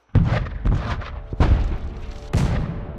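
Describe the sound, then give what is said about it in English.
Heavy 12-pounder assault cannon blasts boom out in quick succession during the Eight Nation Alliance assault on Tianjin at 5:30 a.m. on July 13th: three or four loud reports with rumbling low-end tails that overlap into a chaotic barrage, no voices present. “They brought with them fierce determination and three 12-pounder assault cannons. By 5:30 a.m., they were in position, and the assault began.”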